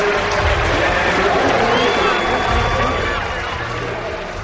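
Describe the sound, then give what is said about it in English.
A large stadium crowd at the U.S. Olympic trials roars and cheers continuously as Dan O'Brien comes home to make the U.S. Olympic team, a dense wall of voices and whistles at steady high volume, with a faint high whistle-like tone rising over the din. “Let's let the crowd carry him home here.”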